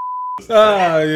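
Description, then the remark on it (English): A short, steady, pure censor bleep tone sounds loud and alone for about a third of a second, then cuts off as a man's voice comes in, speaking. “Beep, beep.”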